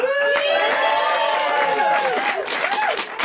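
A crowd claps and cheers loudly and steadily for a few seconds, with rising and falling whoops and shouts riding over the dense patter of applause.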